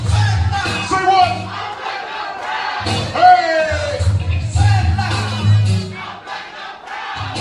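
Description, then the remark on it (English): A large crowd in Harlem, New York, cheers and yells celebrating the election of the first African-American US president, a dense, loud roar of many voices with whoops and shouts rising over it, while a steady low thumping beat of music played by a DJ pulses underneath. “And so, in Harlem, in New York, and across the United States, they celebrated the election of their first African-American president.”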